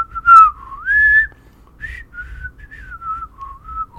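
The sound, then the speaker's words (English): A person whistles a short, wandering melody alone, with sliding notes rising and falling, a couple of louder swells early on and softer held tones toward the end. “Let me do a whistle solo.”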